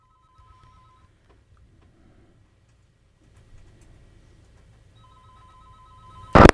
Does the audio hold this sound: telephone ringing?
yes